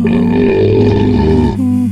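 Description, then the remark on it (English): A long, loud, deep belch rumbles for nearly two seconds with a low, throaty drone, then shifts pitch briefly at the end, made while rating beers; alone, with no talking. “We'll be discussing and rating these beers with the Sudge rating plus our signature belching sounds.”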